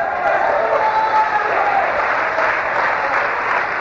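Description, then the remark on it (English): An audience claps their hands in a dense, steady wash of applause, loud and sustained throughout, with many hands overlapping into a continuous roar and no clear individual beats. “Go ahead and clap your hands real good.”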